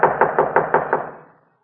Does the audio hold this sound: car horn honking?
no